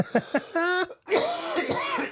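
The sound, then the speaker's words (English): A couple of short, sharp coughs, then a voiced rasp and a longer, rough throat clearing that rumbles on for about a second. No one speaks. “And there's the last cough.”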